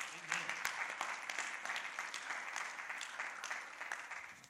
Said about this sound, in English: Would you give him one more hand clap of praise this morning before you're seated?